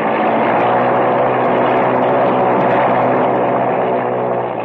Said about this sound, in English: Well, she revs up okay